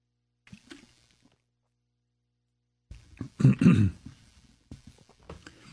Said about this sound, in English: Okay, so excuse me, I have a sip of water.